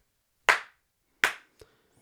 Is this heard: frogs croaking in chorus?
no